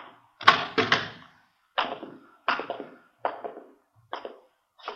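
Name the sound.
door being opened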